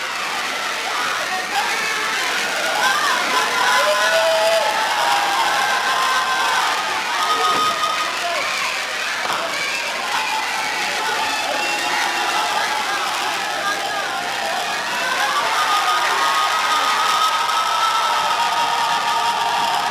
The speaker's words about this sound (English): Listening to the capacity crowd here on hand.